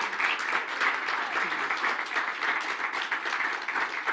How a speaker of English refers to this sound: Well, give Jesus a great big hand clap of praise.